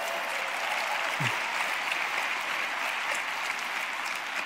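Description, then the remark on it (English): Steady, dense applause from an audience fills the whole stretch, a broad even wash of many hands clapping at once with no pauses, fairly loud and sustained throughout. “I know your applause are”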